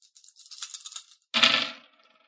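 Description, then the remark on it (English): Five dice rattle and click together for about a second while being rolled for a game roll, then tumble out onto a hard surface in one loud clatter that quickly dies away. No one speaks. “I'm going to have you make a, body plus move roll as well. Okay. So that is going to be 5 dice.”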